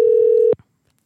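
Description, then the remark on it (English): A loud, steady electronic ringing tone from an outgoing phone call holds for about half a second, then cuts off abruptly, leaving near silence with no voices. “This one's not even ringing. Oh, there we go.”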